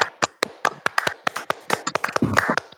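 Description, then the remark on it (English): Hand clapping for a round of applause: a quick, slightly uneven run of sharp, crisp claps, about fifteen in under three seconds, moderately loud with no voices over it. “Okay, first of all, you went outside, so we got to give him a round of applause for that.”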